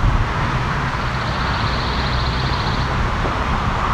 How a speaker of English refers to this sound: Sometimes the pine warbler starts soft, goes louder then softer. Sometimes it starts strong and then goes lighter, just fades out.